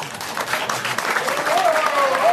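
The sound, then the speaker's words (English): A crowd applauds steadily, dense overlapping clapping that holds at a fairly loud level throughout, with a few faint whistles or cheers rising over the noise near the end. “So you're beginning with applause.”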